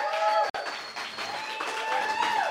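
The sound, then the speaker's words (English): A live audience at Twilight Theater applauds steadily for a few seconds before the second act, a dense wash of clapping with cheering voices mixed in and a brief dropout near the start. “And with that applause, please welcome, for our stylish and seductive second act”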